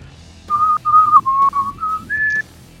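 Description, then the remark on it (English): Someone whistles a short flute-like melody, imitating a flute playing Ave Maria: six smooth, sustained notes that hover around one pitch, then step up higher on the last note. The whistling is clear and alone, with no talking. “He pulls his flute out, aims it at the guy, and he plays like.”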